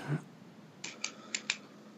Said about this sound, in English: She's on the typewriter.